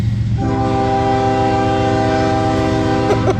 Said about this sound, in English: And this one's actually a cargo train. This one is long. Yeah, this one's a long one, so it's going to take a little bit longer.